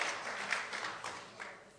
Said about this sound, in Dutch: I hope you mean it. I hope it's not just empty clapping.